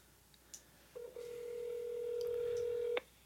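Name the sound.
phone call dialing tones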